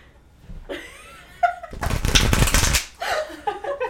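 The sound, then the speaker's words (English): A deck of cards is riffle-shuffled close to the microphone: a loud, rapid fluttering burst lasting about a second, with brief voices before and after it. “I think that you told me that, like, at the very beginning, that Mary was like, that shuffle on the microphone is loud.”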